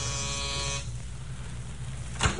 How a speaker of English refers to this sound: The Ellises lived in a white stucco apartment house halfway up a hill on Melrose Avenue, east of Vermont. They had a ground floor apartment with an outside entrance. Carol rang the bell.